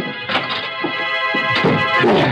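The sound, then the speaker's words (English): The door of a room in a rooming house being closed: a series of dull thunks and rattling bumps over a steady electrical hum, with no voices. “He had to get to his room, get in and close the door of the world. Close the door.”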